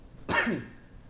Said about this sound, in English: Sorry, I coughed.